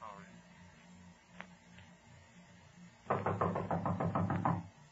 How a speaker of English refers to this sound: You'll go to the door and knock on it. When someone answers the door, we'll rush in.